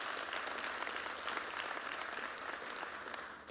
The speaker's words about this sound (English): Amen, everybody. Come on and clap your hands to that if you agree with that word.